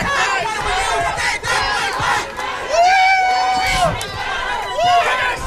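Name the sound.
protest crowd yelling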